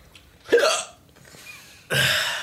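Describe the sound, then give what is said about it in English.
Two abrupt hiccups about a second and a half apart, each a sharp gulping burst. The second is sustained and breathier, with quiet room tone in between. “I think I have the hiccups now, right before we record.”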